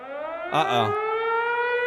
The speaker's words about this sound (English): You know what that means when you hear the siren.